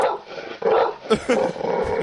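A dog growls and lets out a few short, rough barks, the grumbling sound rising and falling over a couple of seconds.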